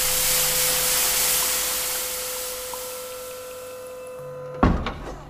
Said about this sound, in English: Okay, you stand to the side and you open up the chamber. It's kind of like a flash of steam.